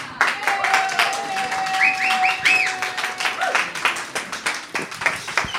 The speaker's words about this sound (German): Ja, und einsteigen tut die Petra mit einem riesigen Applaus jetzt, denn sie bringt einen ganz starken Teil.